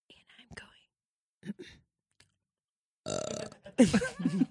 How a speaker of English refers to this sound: Oh my god, the burps. Oh, I liked it. The burps in my video were the favorite part. They were ridiculous.